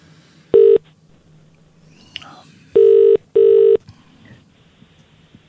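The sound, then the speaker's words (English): A telephone ringback tone from an outgoing call to a radio station, heard down the line: a short buzz, a pause, then a double ring of two steady, slightly harsh tones, over a quiet, faintly noisy background. “We'll phone up another radio station.”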